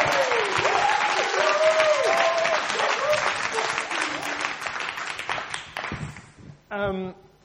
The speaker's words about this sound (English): If you're with me on coming from the King's Arms, why don't you just stand up real quick? Let's welcome these guys and give them a round of applause.